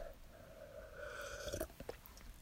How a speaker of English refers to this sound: What's it? One more sip. Man, I feel like a woman. One more last sip.